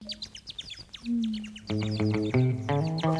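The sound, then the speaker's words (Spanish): A cumbia intro opens with a flurry of quick, high blackbird chirps, then sustained accordion-like tones and a steady band arrangement swell in beneath the continuing chirps. “Mira los pajaritos, mirlos. Correcto. ….”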